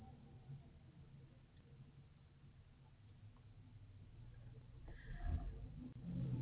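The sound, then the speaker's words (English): Steady low rumble of road traffic, muffled and continuous, swelling louder toward the end as a vehicle seems to pass. No one speaks. “Oh my goodness, as you guys have to suffer through listening to traffic as I'm finding the one I wanted to find.”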